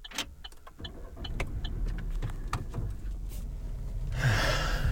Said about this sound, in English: That was the sound of me loading in all of our stuff, because we have so much stuff.